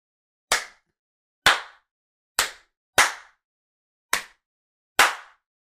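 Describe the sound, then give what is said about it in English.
Six loud, sharp hearty hand claps, given on request, at an uneven pace, each a crisp smack that dies away quickly, with silence between them and no talking. “Okay, so give me your heartiest.”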